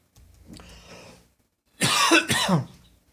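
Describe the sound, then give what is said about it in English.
A person with something in their throat clears it softly, then lets out two loud, harsh coughs in quick succession, with no talking. “Wish I had a cough button.”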